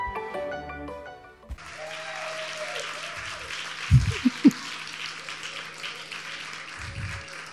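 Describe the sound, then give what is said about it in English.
A short musical phrase gives way to a sudden wave of audience applause at the York Theatre, at a Vancouver Writers' Fest staging: dense and steady clapping from many hands that holds at an even level, with a few brief low thumps mixed in. “Oh, you applaud now.”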